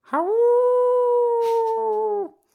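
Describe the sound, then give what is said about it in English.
A person lets out one long, loud howl imitating a werewolf, rising briefly then holding a steady pitch for about two seconds before cutting off, with no speech around it. “if KeyForge goes long enough, there will be werewolves”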